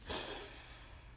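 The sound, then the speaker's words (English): A single deep breath drawn in through the nose, fairly loud, with a sharp airy onset that trails off into a steady hiss, taken during a guided deep-breathing exercise. No talking. “Let's breathe in”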